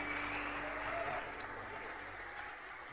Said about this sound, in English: Clap your hands for this amazing man of God. Amazing man of God.